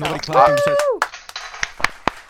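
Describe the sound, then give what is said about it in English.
A voice with falling, drawn-out tones, then a handful of sharp, irregular hand claps, each short and crisp with quiet gaps between, not a sustained round of applause. “I'm clapping, but round of applause.”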